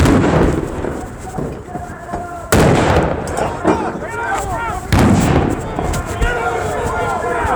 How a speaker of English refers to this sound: Flashbang grenades explode around them as FBI agents sprint out, guns drawn.